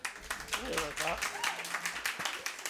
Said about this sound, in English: You guys have no idea what she's going to say, and yet you're clapping for her.